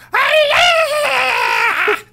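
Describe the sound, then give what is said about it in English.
A voice lets out a loud, shrill imitation of a scream, one sustained wavering wail lasting about two seconds with a brief rising break near the end. “Every time I walk by, it's just this blood-curdling scream.”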